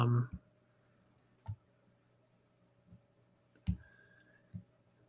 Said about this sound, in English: Sorry for the. No, you're good. For the typing.